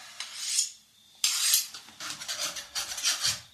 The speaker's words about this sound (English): Carve me a slice of that cheese.